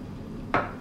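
household object, glasses clinking

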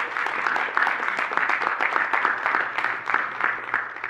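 crowd, audience applause

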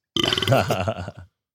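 human body sound, burp into the microphone

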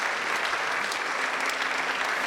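crowd, welcoming applause

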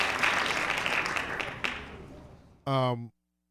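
crowd, hand claps

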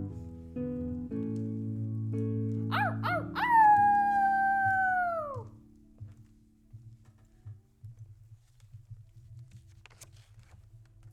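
animal, wolf howling

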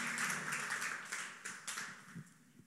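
crowd, audience clapping hands

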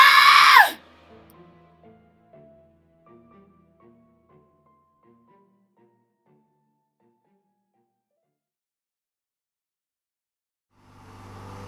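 human body sound, woman screaming in pain

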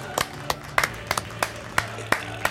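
crowd, applause

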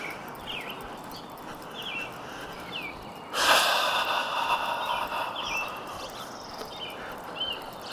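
bird, birds singing outdoors

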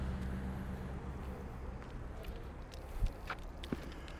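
vehicle, cars driving past

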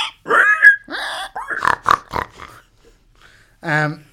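animal, pigs grunting and oinking

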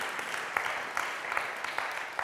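crowd, audience applause

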